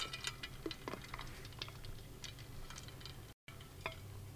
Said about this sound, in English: But I'm going to take a quick sip of my coffee. You're going to hear it, a little ASMR.